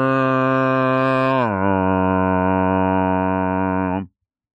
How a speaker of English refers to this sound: Did you hear that? Yeah, well, almost. Sorry, I got a little drowned out by that foghorn.